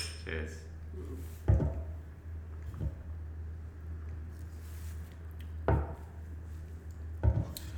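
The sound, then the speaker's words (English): Beer glasses clink together in a toast, a few sharp, bright knocks spaced out over a steady low hum and faint background murmur. “Can I get a kanpai, gentlemen?”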